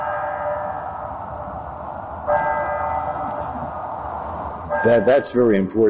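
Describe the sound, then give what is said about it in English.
A steady, droning bell or gong tone rings continuously in the background of an old sound recording made of the actual shots of the JFK killing, stepping slightly louder partway through, before a man's voice speaks over it near the end. “you can hear that gong going off, the bell going off, which proves that it was done here”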